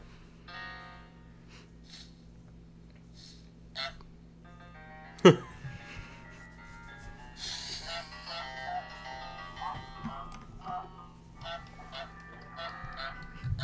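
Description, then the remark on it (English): A goose honks in short bursts in a video game release date trailer, over light background music and busy game sounds, with a sharp loud thump near the middle and scattered clatter afterward. “So he's honking.”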